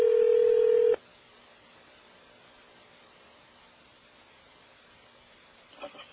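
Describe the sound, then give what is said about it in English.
A loud electronic hotel room telephone ring sounds once at 2 o'clock in the morning, a steady tone lasting about a second, then cuts off into quiet hiss with a faint rustle near the end. “Oh, somebody is ringing the phone.”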